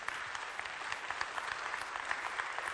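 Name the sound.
audience clapping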